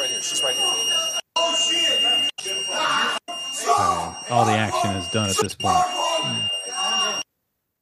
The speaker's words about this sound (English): Some kind of alarm now going off. Yeah. That sounds like a door alarm.